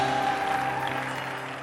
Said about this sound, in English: Anybody clapping?